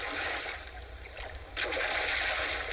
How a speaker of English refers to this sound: Luckily, the farmer led the class over to the duck pond first. The ducks were doing their silly follow-the-leader run and jumping into the water, one by one.